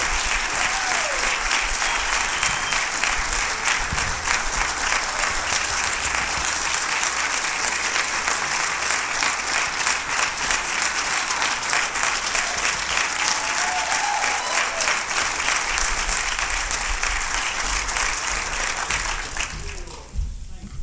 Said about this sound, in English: And if you believe you're part of something greater than yourself because you're part of the kingdom, would you give God one more big hand clap?